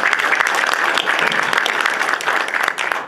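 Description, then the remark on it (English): A crowd breaks into steady applause for a man at the back of the room who put the presentation together, many hands clapping in a dense, continuous patter that holds at a fairly loud level for about three seconds. “Have a nice round of applause.”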